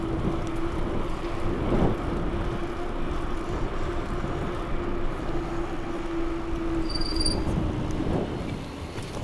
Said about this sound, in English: Well, I really gotta fix that front brake. It's squeaking more and more.